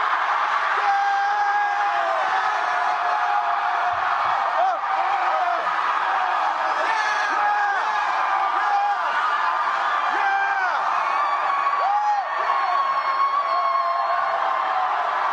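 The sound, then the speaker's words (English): A large audience shouts and cheers together in a dense, sustained roar of overlapping voices, with whoops rising out of the din throughout, loud and never dropping away. “Come on, somebody, keep shouting. Keep shouting.”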